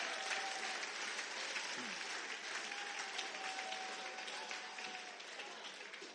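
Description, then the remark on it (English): An audience applauds for Adoniram Judson after a reading of his letter, dense steady clapping from many hands at an even level throughout, with a faint whistle or tone running through the middle of it. “Clap for Adoniram.”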